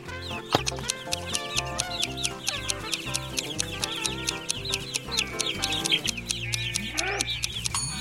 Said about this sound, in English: But one morning, the man was woken up by the noise his chickens were making.